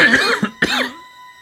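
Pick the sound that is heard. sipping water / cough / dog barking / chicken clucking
cough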